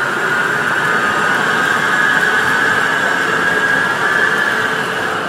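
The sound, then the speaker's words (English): A Portland MAX light rail train, not in service, rolls past with a steady, loud rumble and a sustained mid-pitched electric whine, holding constant throughout with no voices. “There goes a Max, not in service.”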